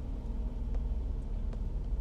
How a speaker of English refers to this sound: So I am going to... Do a little lull in the traffic so I can get into this.